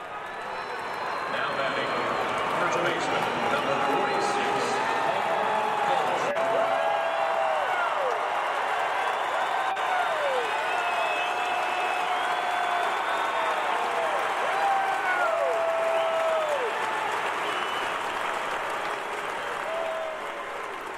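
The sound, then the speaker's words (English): A baseball crowd gives sustained, rousing applause as a player comes up to bat in the top of the first inning: dense clapping holds steady and loud for about twenty seconds, with crowd voices, shouts and sharp whistles rising over it. “But when he came up to bat in the top of the first inning, he got a rousing round of applause.”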